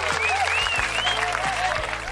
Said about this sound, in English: Now, Round of applause.